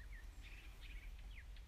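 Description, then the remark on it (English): Birds chirp faintly in short, scattered bursts of high tweets over a low, steady background rumble, with no one talking. “Just a dreadful little poem with some birds in the background.”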